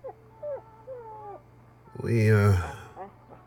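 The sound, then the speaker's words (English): Dogs whimper outside a door: a few thin, wavering whines, then one louder drawn-out whining cry near the end, with quieter whimpers trailing after. “Aren't those Dr. Volta's dogs?”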